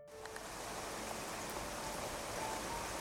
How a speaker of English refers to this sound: The rain intensified and a streak of lightning dashed across the sky.